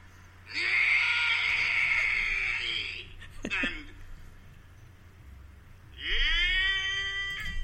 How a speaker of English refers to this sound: That just made me want to scream. In fact, I think I will.